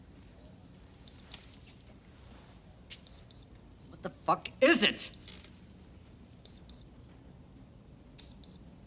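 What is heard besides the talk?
wristwatch alarm beeping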